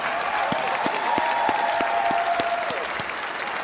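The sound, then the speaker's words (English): An audience at the 2021 Pro Football Hall of Fame enshrinement ceremony applauds steadily for Carol Davis, a dense wash of clapping with some sharper individual claps standing out, lasting the whole few seconds at a fairly loud, even level. “How about a round of applause for Carol Davis, who wasn't able to be here tonight, but she did a wonderful job.”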